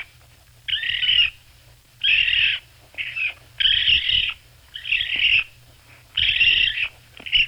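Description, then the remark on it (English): Baby raccoon calls: a series of high, shrill chittering cries in bursts of about half a second to a second, repeated steadily with short pauses, fairly loud and with no talking. “I'm sure many of you heard a raccoon scratching at your door or rummaging around your trash can”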